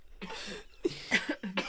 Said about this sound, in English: It's time to cough. It's cough time. Cough break.